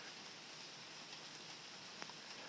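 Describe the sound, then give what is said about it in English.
Steady rain hisses down outside, heard from a porch, in a dense, even wash of noise, with occasional sharper drops tapping against a surface. No one speaks. “I'm just doing it because it's raining outside and I'm on the porch smoking.”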